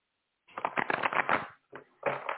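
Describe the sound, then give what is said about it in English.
A deck of cards being shuffled for a card reading: a rapid riffling burst of papery flicks lasting about a second, a brief pause and short flutter, then another quick riffle. No voices. “A couple more shuffles here.”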